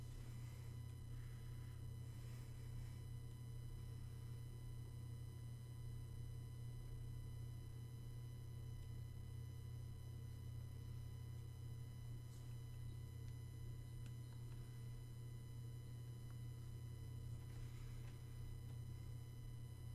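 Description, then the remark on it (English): A refrigerator hums with a steady, low drone that holds unchanged for the whole stretch, quiet, with no voices or other sounds over it. “There goes my fridge again.”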